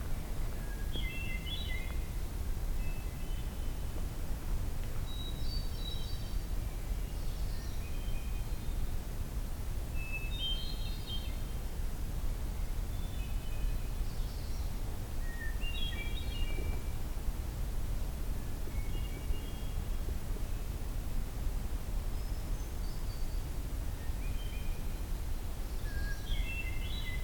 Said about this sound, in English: This is a very quiet, either magnolia or maybe hooded warbler. So that's another possibility here. But it's not the full weedy, weedy, weedy-o. So I'm going to go with magnolia warbler on that.